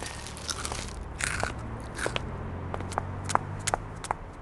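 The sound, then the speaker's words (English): Crisp crunching of crunchy broccoli clumps being bitten and chewed, with a dozen or so irregular sharp crunches and crackles over about four seconds, no talking. “Here's your change, and here's your king-size tub of crunchy broccoli clumps.”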